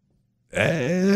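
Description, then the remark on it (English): After a moment of silence, one voice imitates a bowling match crowd's shocked gasp when wild players take over: a sudden, loud, drawn-out groaning exclamation with a wavering pitch, and no other sounds. “And when other people, when the wild ones take over, people, you hear the gasp.”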